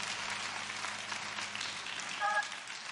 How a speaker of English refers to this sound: Thank you so much for your giving. Thank you. Let's give the Lord another hand clap for your giving. Amen.